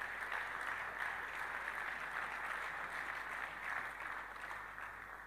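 A crowd of people clapping together, a dense, steady wash of applause that holds at an even level for about five seconds and tapers only slightly at the end, with no voices.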